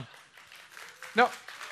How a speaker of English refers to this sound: You guys clap for that and you don't clap for Jesus? My goodness.